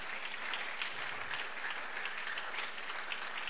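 A crowd claps for Jesus steadily for several seconds, a dense, continuous patter of many hands at fairly even loudness, with no voices standing out.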